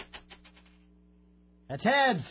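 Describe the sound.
A coin is flipped and clatters down, rattling in a quick series of light metallic clicks that fade within a second as it lands heads, followed by a short quiet pause before a voice starts.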